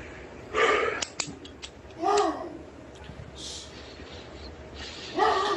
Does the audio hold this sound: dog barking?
yes